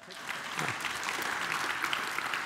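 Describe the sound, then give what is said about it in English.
A crowd applauds steadily, a dense wash of many hands clapping at once with no clear individual claps, holding at an even, moderate loudness throughout. “Hey, don't clap.”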